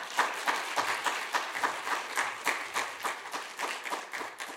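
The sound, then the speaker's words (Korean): A church audience applauds to welcome a guest who has traveled far, many hands clapping in a dense, steady patter with a few louder rhythmic beats, sustained for several seconds with no one speaking. “우리 먼 길 오셨는데 우리 한번 박수로 환영하겠습니다.”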